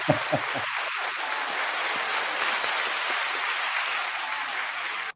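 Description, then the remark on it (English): A steady round of applause for a doctor, many hands clapping in a dense, hissing wash that holds for about five seconds before cutting off abruptly; a few brief voices or whoops at the start. “So for that, doctor, we are going to give you a round of applause now.”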